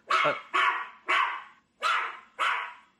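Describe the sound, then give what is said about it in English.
A dog barks five times in a steady rhythm, each bark sharp and loud with a brief gap between, and no one speaking. “maybe put him in the other room in case it gets noisy and barks.”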